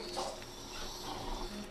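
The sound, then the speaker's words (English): A sheet of paper is folded and creased, a soft, continuous crinkling and rustling that lasts under two seconds with no voices. “I don't know why I folded that up, but I will comment.”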